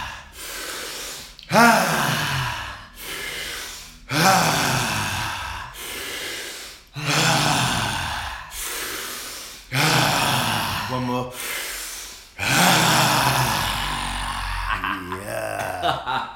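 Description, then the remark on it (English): Deep, rapid breathing exercise: a steady series of about ten loud, forceful breaths in and out, each a broad rushing whoosh, some with a voiced gasping edge, repeating every second or two. “Hands get tingly because of all the oxygen coming in and the CO2 going out. Same as when you do the Wim Hof breathing.”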